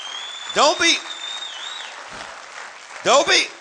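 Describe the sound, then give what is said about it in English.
An audience claps at a preacher's call during a sermon on Psalm 1, in two short bursts of two loud claps each, separated by a lull, with voices calling out and a thin, high ringing tone lingering underneath. “Come on, clap your hands like that makes sense.”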